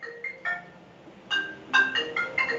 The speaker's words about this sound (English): Well, I turned that one off, but I didn't turn all the others off. I'm sorry. I warned you, my phone is going to be a little crazy today.